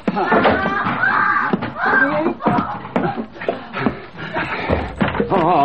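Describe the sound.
A locked and bolted room door is shaken and knocked against its frame in several sharp, uneven bursts, while voices talk and exclaim over the clatter.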